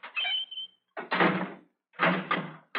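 A heavy cell door is hauled open and slammed shut as a prisoner is put inside, three harsh metallic bursts with short silent gaps between them and no talking.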